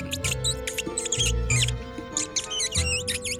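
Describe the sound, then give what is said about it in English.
A frantic chorus of high, rapid squeaks from several small creatures, overlapping in bursts, with breathy hissing and low rustling underneath; loud and continuous throughout. “As you move a little closer, their hissing and squeaking gets even more intense.”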